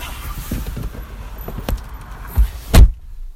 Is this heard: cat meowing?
no